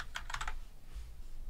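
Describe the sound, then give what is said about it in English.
A quick burst of computer keyboard typing as someone types a search into Google, several crisp clicking keystrokes in fast succession, then fading into quiet room hum with no voices. “Actually, as I'm typing in Google, I forgot what it was.”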